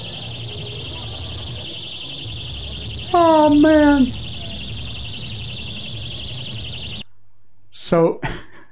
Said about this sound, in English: It's very loud. You see what happened? The balloons are all the way up on the ceiling, way up there. And that alarm is going off throughout the room. I know it's hard to hear, but that's the point.